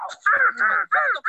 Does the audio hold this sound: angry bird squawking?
yes